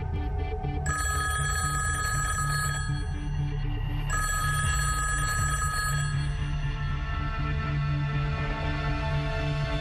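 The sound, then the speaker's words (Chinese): A telephone bell rings in repeated bursts, loud, with a steady low hum underneath and no one speaking: a colleague's call to I.C. Smith, head of the FBI's China counterintelligence unit, one day in September 1982. “1982年9月的一天，美国联邦调查局中国反情报组组长 IC 史密斯接到同事的一通电话。”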